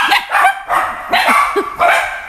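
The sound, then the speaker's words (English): Dogs bark in a quick series of about four sharp, loud yaps, each burst following the last with barely a pause, with no talking. “Well, the dogs think so.”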